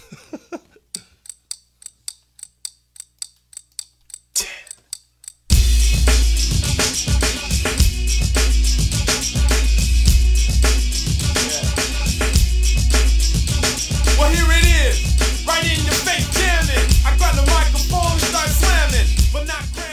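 A rap song plays loud and close: a few seconds of sparse ticking clicks, then a heavy beat with deep bass drops in and drives steadily to the end, with vocal lines riding on top.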